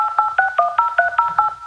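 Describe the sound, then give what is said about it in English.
A phone number being dialed: eight quick touch-tone beeps in a steady rhythm, each a bright two-note electronic chirp, clear and fairly loud with no talking. “I'll call Armando and see where he is.”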